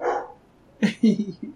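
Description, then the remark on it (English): A dog barks several times in quick succession, a short burst of sharp woofs, following a brief muffled sound at the start. “Why is it, I mean, why can't I have a podcast that doesn't have dogs fucking barking in the background?”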